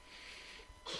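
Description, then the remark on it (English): A single quick sneeze, a short breathy burst near the end after a moment of quiet hiss, fairly soft with no talking. “Bless you.”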